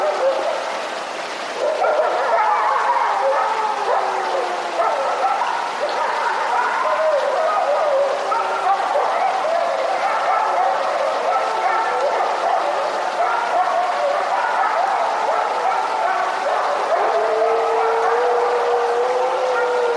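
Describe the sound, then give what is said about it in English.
A wolf pack reclaiming its home turf in Great Smoky Mountains National Park vocalizes in a steady chorus, overlapping wavering howls and higher yips sliding up and down in pitch, loud and unbroken for the full twenty seconds with no talking. “Jonathan Storm got up close to eavesdrop on this wolf pack reclaiming its home turf in the Great Smoky Mountains National Park.”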